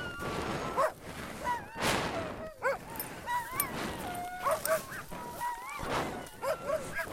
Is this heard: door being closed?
no